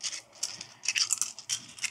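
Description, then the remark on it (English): A handful of five dice rattles and clatters in a series of quick, bright bursts, with a short pause before a final flurry of clicking as they tumble. No one speaks. “So I got 5 dice.”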